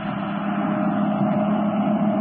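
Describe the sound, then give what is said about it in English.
Brinkley's car coming fast along the road and going by, heard as a steady, unbroken rumble of engine and tire noise with a low hum, holding an even loudness throughout with no voices. “Look, Cato, there's a car coming along the road. When it goes by, we might as well start after those trucks again.”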